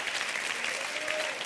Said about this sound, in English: Clap your hands.